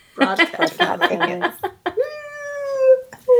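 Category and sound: animal, kitten meowing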